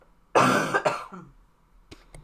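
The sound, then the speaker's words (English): A loud cough in two harsh bursts, followed by a softer throaty rasp and a couple of faint clicks, with no talking. “I'm gonna cough.”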